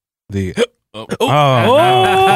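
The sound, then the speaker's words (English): Two quick hiccups pop out in succession, each a short voiced gulp, from a person who has just eaten spicy hot sauce, and then a person starts talking right after them. “You got the hiccup. That means it's hot.”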